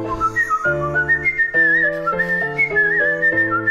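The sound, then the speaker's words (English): A man whistles a loud, wavering melody, sliding between sustained notes, over steady chordal instrumental accompaniment with no talking. “By the way, I hope he has nothing but whistling videos.”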